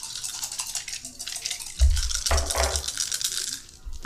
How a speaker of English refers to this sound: So, I'm rolling 4 dice.